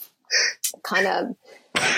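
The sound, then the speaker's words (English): A person talks briefly, then a sudden, sharp sneeze bursts out, loud and abrupt, cutting across the conversation near the end. “bless you.”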